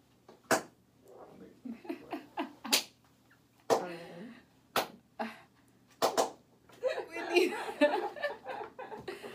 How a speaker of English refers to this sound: Okay. Oh, that always cracks me up. But the sound of the black hand clap does signify that we are live. We are live. Yes. So we are live.